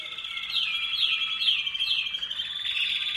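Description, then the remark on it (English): Caged show birds at a bird show sing continuously in a bright, high warble with repeated rising chirps and trills, fairly loud, with no talking over them. “Now, occasionally you get a really loud bird and you cover them up so they'll stop singing.”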